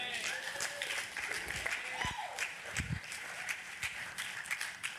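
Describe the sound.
A crowd claps steadily for the full five seconds, a dense, crackling wash of many hands, with scattered voices and a brief whoop rising over the applause.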